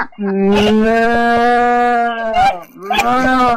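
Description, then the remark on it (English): A person imitates a cow with a long, loud, droning moo lasting about two seconds, then starts a second, shorter moo. There is no other talking. “Here's a cow.”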